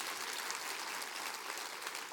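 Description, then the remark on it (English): An audience claps steadily, a dense wash of many hands applauding at once, sustained and fairly loud throughout with no voices standing out. “Clap your hands and say, I need some of that in my life.”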